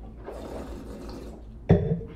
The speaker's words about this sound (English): I took a really big sip. That's a big one.